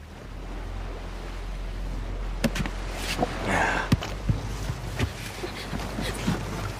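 Sea water washes and laps steadily around a small boat, with a low rumble beneath and several sharp slaps and knocks against the hull.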